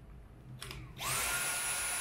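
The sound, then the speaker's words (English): A cordless V7 vacuum cleaner is switched from low to its high setting after a short click, settling into a loud, steady, high-pitched whine with a broad airy rush like a hairdryer, heard without any talking. “When I turn on the high mode, you'll see the difference.”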